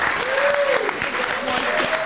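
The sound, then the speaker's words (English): Sustained crowd applause for a panel and the organizers, a dense steady wash of clapping at a fairly loud, even level, with faint tonal whistles or cheers sliding underneath. “Round of applause to the panel.”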